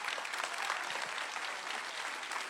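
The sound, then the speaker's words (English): A church audience applauds steadily in a hand clap of praise to Jesus Christ, a dense wash of many hands clapping at once, sustained and fairly loud throughout with no individual voices standing out. “Can we put our hands together? Let's give Jesus Christ a big hand clap of praise.”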